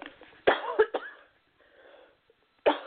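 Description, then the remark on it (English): Several sharp coughs from one person, a quick cluster of two or three followed by a short pause and another single cough. “Excuse me, I may be coughing a little bit.”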